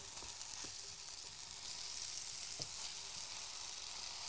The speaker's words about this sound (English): Last two tomatoes face down. A bit of salt. See, now we're getting some sizzling back again. That's nice.